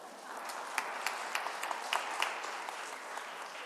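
An audience claps in a steady round of applause, a dense wash of many hands with sharper individual claps popping out, sustained at an even level for a few seconds.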